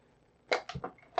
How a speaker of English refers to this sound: Actually, I was crunching the tin a little bit.